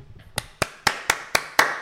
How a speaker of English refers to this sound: Clap it up.